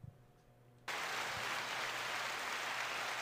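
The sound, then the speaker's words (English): After a moment of low hum, a crowd cheer sound effect played from a device erupts abruptly and holds as a steady, dense roar of clapping and shouting until the end, with no distinct voices. “The crowd's going wild.”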